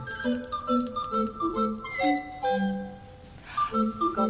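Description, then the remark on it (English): A short ticking-clock thinking-music cue: steady, clock-like ticks under a light, repeating melody of bright plucked notes, moderately loud and unbroken by any talk for about four seconds. “I want thinking music.”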